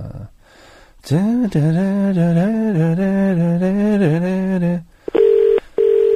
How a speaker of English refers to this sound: Oh, she must have accidentally dropped the phone. I'll just give her a quick call back. She must have dropped the phone down there, so...